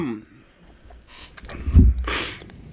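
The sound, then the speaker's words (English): A person coughs into a microphone, two or three harsh bursts with a heavy low thump, ending in a loud, airy hack. No one speaks. “I apologize, so I keep coughing into the mic.”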